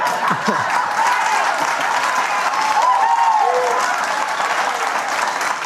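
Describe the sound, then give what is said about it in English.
A large audience of baby boomers applauds and cheers steadily, a dense wash of clapping with scattered whoops and shouts rising above it, loud and sustained throughout. “Let me tell you something about the baby boomers who are cheering in that audience, because they do cut to this audience of people.”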